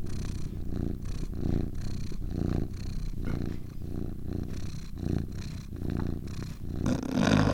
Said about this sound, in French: Comme Moustache, le chat qui nous observe depuis que nous sommes installés. Et si tu tends l'oreille, tu l'entendras ronronner. Laisse-toi bercer par ce son agréable et réconfortant.